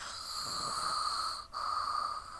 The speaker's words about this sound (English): Some snored softly in their cages.